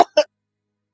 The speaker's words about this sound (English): Bless you, whoever is coughing.